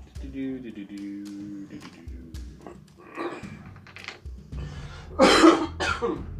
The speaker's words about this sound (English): I'm fighting a cold tonight, so if I'm coughing a lot, that's why. It's not the other thing. It's just a common cold.